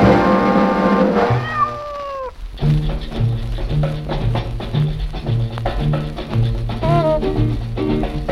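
A cat meows twice, one drawn-out call near the start and a shorter one later, over a steady, rhythmic music track with a bouncing bass line.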